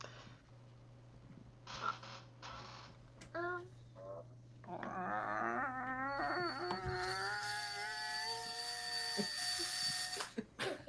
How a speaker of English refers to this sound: Wow, it's motorized. It squeaks at the same time. Oh my gosh. The painting opened like a door.